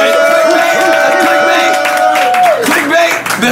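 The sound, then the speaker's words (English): A loud, dense wash of crowd noise with cheering and shouts, cut through by a steady high whistle-like tone that slides downward near the end. “Let's make some noise.”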